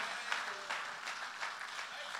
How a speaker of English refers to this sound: I wish you'd clap your hands today and thank the Lord for salvation.